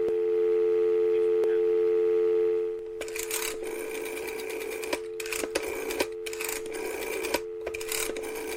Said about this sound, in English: I have my rotary phone. So, bear with me 1 second. I'll just go get my rotary phone. Found it. Let's pick up the handset and dial the numbers. Such fun.